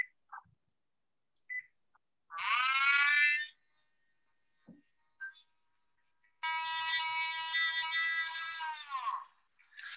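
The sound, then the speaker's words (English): Two loud, high, harmonic wails of a recorded alleged Sasquatch howl from Ohio: a short one of about a second, then a longer, steady cry of about three seconds that drops in pitch at its end, with faint clicks between. “Yeah, that's Ohio howl.”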